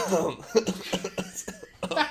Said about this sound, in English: So I just had a little cough. My bad.